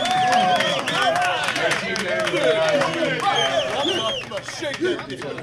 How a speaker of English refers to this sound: There's my team. Come on, everybody. Say a round of applause for my team.